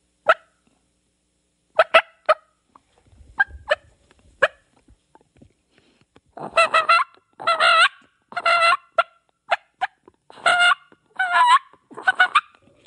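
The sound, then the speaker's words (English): A turkey call fitted with a yelper read imitates a hen: a few sparse, sharp clucks, then a steady series of raspy, high-pitched yelps with rolling purr-like notes, loud and alone with no talking. “it's purring. That read's not meant to purr. It's more of that yelper read.”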